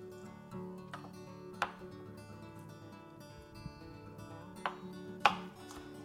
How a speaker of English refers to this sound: Okay, chopping up the garlic. Nice and fine.